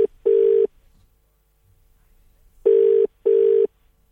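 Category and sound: signal or alarm, telephone line ringing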